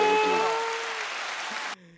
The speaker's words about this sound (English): Hey, play them fucking clap. Oh, play the clap.